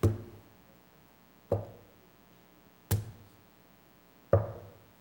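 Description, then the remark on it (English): Four heavy thuds of rocks being dropped onto the ground, evenly spaced about a second and a half apart, each a sharp low impact that quickly fades, with quiet in between. “And so all the rocks were dropped.”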